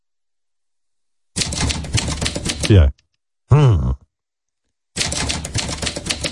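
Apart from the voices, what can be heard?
typewriter typing sound effect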